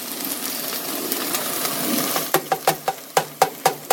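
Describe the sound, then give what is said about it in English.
Liquid, a cup and a half from a measuring cup, pours steadily into a pot of rice with a soft, hissing splash, followed by a quick run of sharp, evenly spaced taps or clinks. “I'm going to carefully squire that over to my pot of rice and pour it in.”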